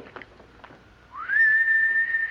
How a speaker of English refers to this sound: Well, can you whistle yourself? You mean like this?